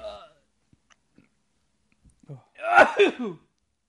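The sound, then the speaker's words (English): A single loud, breathy sneeze caused by allergies bursts out after a moment of near silence and a few faint clicks, briefly preceded by the tail end of a voice. “Bless you.”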